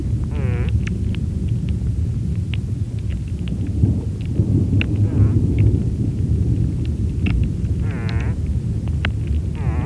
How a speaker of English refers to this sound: Jeff, one of my favorite recordings you made is a little mystery critter that your hydrophone picked up. Let me play that clip for us now.